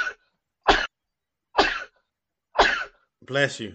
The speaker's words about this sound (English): Bless you.